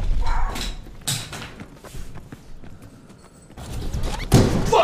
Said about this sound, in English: Well, now he's pounding the wall. We put a hole in the wall, or at least a dent.